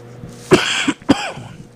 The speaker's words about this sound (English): Sorry, I'm coughing a lot. You know what I mean? It's the vape ski.